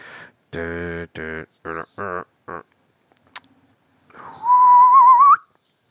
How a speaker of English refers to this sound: I don't know why I'm whistling now.